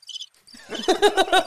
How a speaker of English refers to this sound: Just crickets.